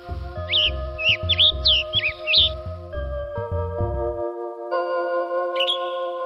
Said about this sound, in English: And the tanager on the other side, on the west, has a different kind of call.